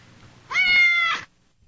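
A single clear cat meow, rising then holding a drawn-out, slightly strained tone for about a second before cutting off, with a quiet background and no talking.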